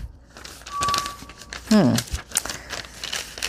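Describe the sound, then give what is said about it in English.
Crisp crinkling and rustling of paper being folded to go inside a small book, with irregular bursts of crackle throughout and a brief voiced murmur partway through. “Let me see if I can fold this and just get her done.”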